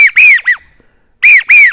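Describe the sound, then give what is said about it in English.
A duck whistle imitates an American widgeon: three quick, high, squeaky arching notes, a short pause, then two more longer ones, loud and with no talking. “one of my favorite ducks is a widgeon, American widgeon.”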